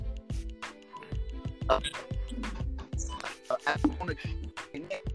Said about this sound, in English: Somebody's phone's breaking up. Somebody got that Cricket wireless, boy.